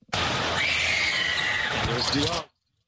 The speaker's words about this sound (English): She would scream at the top of her lungs. They put her on the telecast, too. Yes, they did. They did the double shot. They, every time they would go up to take a free throw, she would scream like that.